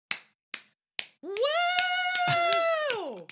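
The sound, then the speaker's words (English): Three sharp, evenly spaced hand claps ring out alone, then a long, high whoop of a cheering voice takes over while a few more claps land beneath it, cheering for actor Bob Gunton. “Woo! Encore! Oh my God, look at this huge crowd that came out for Bob Gunton.”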